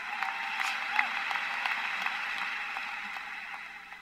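An audience applauds with steady, dense clapping that holds at a moderate level for several seconds, then begins to thin and fade toward the end. No one speaks over it.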